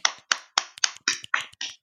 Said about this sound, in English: Note to self. Those were just normal claps, not claps that mean I have to edit something.